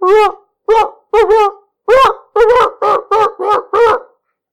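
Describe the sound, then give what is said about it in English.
About ten loud barks from a dog in a quick, uneven series, some doubled up, each one short and sharp with brief silences between them and no other sounds around. “It was the same barks every fucking week.”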